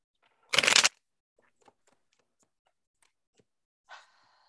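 A single quick, loud riffle of tarot cards being shuffled, then a few faint taps and clicks, and a short papery slide near the end as three cards are drawn: the Seven of Coins, Knight of Wands and Knight of Swords. No one speaks.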